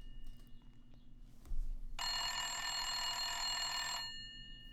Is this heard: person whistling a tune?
no